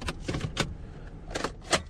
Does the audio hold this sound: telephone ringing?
no